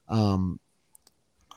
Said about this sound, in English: sorry, I was about to burp.